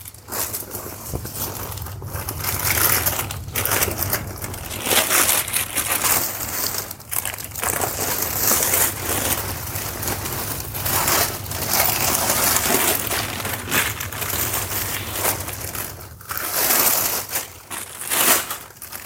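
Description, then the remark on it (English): Continuous crinkling and crumpling of plastic packaging as a beach bag is wrapped back up in it, with sharp crackly bursts and brief pauses as the wrap is folded and handled, steady and fairly loud throughout with no talking. “Okay, so we will wrap it back just like it was before.”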